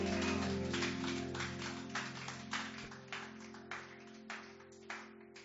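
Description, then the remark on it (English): A church audience claps together for Jesus, a dense, steady wash of hands at first that thins into more distinct, rhythmic claps toward the end, over a sustained low organ-like hum. “You want to put your hands together for Jesus, somebody?”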